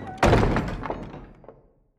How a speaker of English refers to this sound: He's hauled back to the camp and thrown on the floor of the stockade, the door slammed and locked behind him.